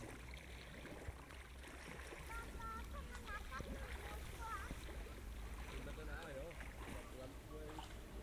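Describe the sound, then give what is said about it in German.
A paddle churns lake water beside a boat, a steady sloshing and swirling that fills the whole stretch, over a low wind rumble with faint voices in the background. “Wie ein Koch rühren mit Paddel, was ist das im See?”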